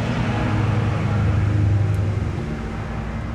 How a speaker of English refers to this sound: Hang on, I'll wait for this car to go past.